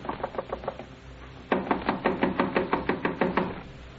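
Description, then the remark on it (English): Knocking on the door of room 16 in a rooming house: a quick run of lighter raps, a short pause, then a louder, insistent series of about a dozen hard, evenly spaced knocks. “Go on, open up or we'll break the door in, will you?”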